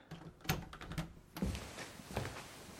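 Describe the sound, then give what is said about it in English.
A door being opened with one hand: a few sharp clicks and knocks from the handle and latch, then a soft thunk as it swings, with faint rustling between and no talking. “I need one hand to open this door.”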